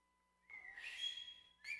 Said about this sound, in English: And so the guy whistles. I can't do it. Somebody do it for me.